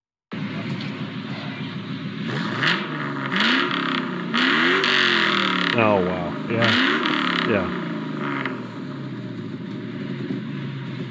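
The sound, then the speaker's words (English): A 2002 Mustang GT V8 with a pipe bomb catback exhaust revs repeatedly, its deep rumble climbing and falling in several loud bursts, with people briefly reacting over it. “That was the pipes, pipe bomb, catback exhaust. Yeah. On my 2002 Mustang GT.”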